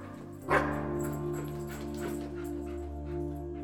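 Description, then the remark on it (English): A dog barks and yips in short bursts, starting with a sharper bark, over a steady, humming tonal background. No one speaks. “and then I would make him drop it off in front of me, and then he would start to bark.”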